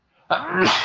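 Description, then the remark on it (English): A single loud sneeze: a faint intake of breath, then a sudden explosive burst that holds briefly as a strained, voiced blast before cutting off. No talking. “I'm going to sneeze.”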